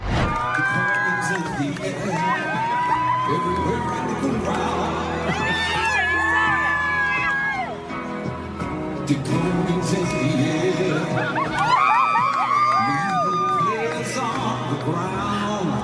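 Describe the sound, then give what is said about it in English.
A large crowd roars and cheers continuously, many voices overlapping in loud shouts and whoops that rise and fall over about sixteen seconds, with no pause or quiet moment. “I can't help but think if it had been a Collingwood, if he'd been Collingwood, it would have been a much bigger from the crowd.”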